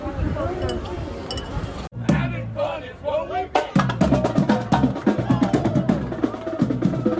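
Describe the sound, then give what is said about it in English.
Glasses clink together in a toast with grown-up lemonade at Woody's Lunchbox in Hollywood Studios, a few bright, sharp taps, set against the steady murmur of a busy, chattering crowd. “So yeah, cheers.”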